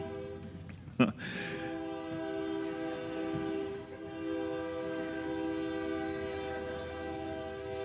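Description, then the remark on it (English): A train horn sounds in a long, sustained blast with steady stacked tones, loud, briefly punctuated by a sharp clank near the start, while rail rumble continues underneath. “I'll just go between the horn blasts there.”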